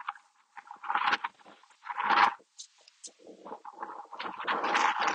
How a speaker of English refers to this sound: Oh, it is a bit windy, as you can probably hear.